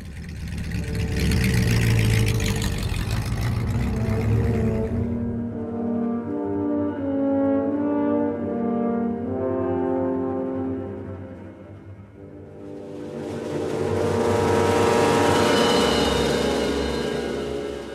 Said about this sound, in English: From your perch inside Gilly's trailer, you can just see the back door of the car open, the door to Cliff's trailer open, and then a figure, presumably Cliff, move from the trailer and into the car. The door shuts and the car drives off.